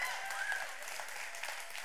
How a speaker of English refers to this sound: That's your opportunity to really clap and really shout.